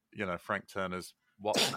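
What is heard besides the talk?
sneeze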